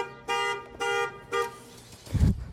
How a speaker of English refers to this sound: A man's car alarm went off. I apologize. I hope that didn't scare you. It scared me a little bit, I'll be honest.